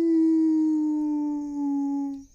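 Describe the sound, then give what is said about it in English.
A person's voice imitates a wolf howl by deepening the vocal cords: one long, steady note held for about two seconds that sags slightly in pitch before breaking off, with no other sounds around it. “Let me work the howl in here.”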